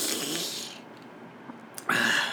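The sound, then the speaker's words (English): A person yawns: a long, breathy intake that slowly fades, a brief quiet, then a short voiced, slightly squeaky exhale at the end. “Oh, my God, I don't know why I'm yawning so much.”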